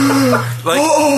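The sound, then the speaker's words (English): A voice imitates a dramatic gasp for air, like a first breath after stopping breathing during sleep: a loud, drawn-out voiced intake that breaks briefly in the middle and then surges again. “And then he acts as if he has breathed for the first time afterwards. So it's like the first breath of life.”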